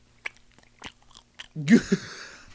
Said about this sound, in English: I just don't really want to talk into the mic while I'm like chewing my food.